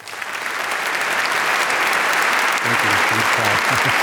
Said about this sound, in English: Ladies and gentlemen, a big round of applause for Thomas Friedman.